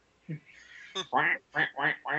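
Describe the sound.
A voice makes duck-like quacking noises: a short squawk, then a run of four raspy, nasal quacks in quick succession, fairly loud.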